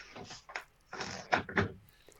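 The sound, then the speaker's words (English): A bed rail squeaks and creaks against a bed frame as someone leans on it, in several uneven bursts over a couple of seconds, fairly quiet, with no talking. “I'm leaning on the bed rail and it's squeaking against the bed.”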